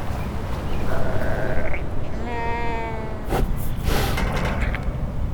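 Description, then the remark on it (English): A pig named Maybelle calls out in its paddock at Collingwood Children's Farm with a few wavering, high-pitched squeals and snorts, over a steady outdoor background of rustling and ambient noise. “Who's the pig? Oh, the pig's name is Maybelle, according to the sign on the paddock.”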